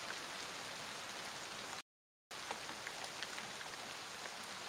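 Steady, dense rain from a storm hisses across the whole clip, with scattered brighter drops pattering on a surface; the downpour cuts out abruptly for half a second before resuming.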